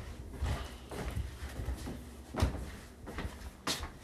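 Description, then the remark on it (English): A door being locked: a handful of irregular mechanical clunks and rattles over a few seconds, with one sharper knock in the middle and no talking. “But, yeah, I think I have to lock the door.”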